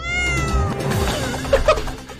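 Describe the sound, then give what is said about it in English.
The cat Gruffbags meows loudly, a long drawn-out yowl that bends in pitch, followed by a couple of short chirpy sounds near the end, with no talking. “So, if everyone knows, I've got Gruffbags the cat.”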